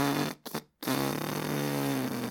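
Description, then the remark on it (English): A voice makes a loud, buzzing fart imitation: a short blurt, a brief stutter and pause, then a long sustained raspberry that drones on steadily to the end. “But he just used some of the air in him to fart himself up and a bit out of my reach, and going like this.”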